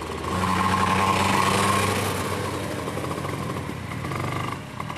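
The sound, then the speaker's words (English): Small go-kart engines start up on a race track for testing, buzzing and whining steadily, a high revving drone with a strong low harmonic that fades slightly after the first couple of seconds. “Start them up. Start your engines. Nicole's class is called Minimax. And it's their turn to take to the track for testing.”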